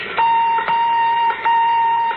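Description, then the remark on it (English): A radar sender, switched on aboard a spacecraft preparing to land on Mars, hums with a steady, high electronic tone that holds fairly evenly, broken by a few brief clicks and dips in level. Nobody speaks. “Switch on radar sender.”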